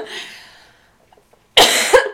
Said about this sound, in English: I've been coughing so much, and I'm so sorry. I've been real sniffly. That is a horrible thing to have to listen to on a podcast, and I'm so sorry.